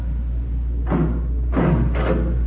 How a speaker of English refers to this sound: Right up ahead, there's some steps. We must be at the end of the tunnel. It's about time. His Highness was going to open the door.